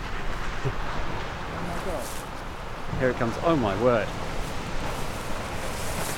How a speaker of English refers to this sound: It is a huge tidal wave. And it is splashing along the bank. Violent wave. Whoa. No one's surfing it. It's coming here. Look at it. Wow. It is like a monster. It's just gone past us.